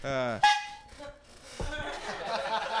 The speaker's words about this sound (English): That's the rule. You hear a honk, no matter where it is, you got a minute.